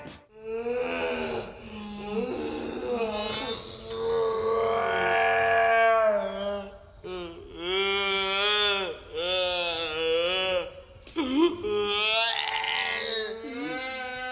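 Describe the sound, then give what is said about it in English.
Slowed-down baby crying: a run of long, deep, drawn-out wails with bending pitch, almost howl-like. The cries are loud and continuous, with short breaks between them and no talking. “The disturbing trend is people are uploading slowed down audio and video of their babies crying and sharing the footage.”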